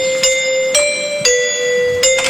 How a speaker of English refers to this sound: The doorbell.